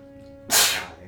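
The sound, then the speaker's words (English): A single sharp sneeze bursts out, loud and breathy, cutting in abruptly after a moment of quiet room hum and fading quickly. “Bless you.”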